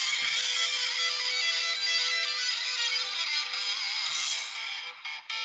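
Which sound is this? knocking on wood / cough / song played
song played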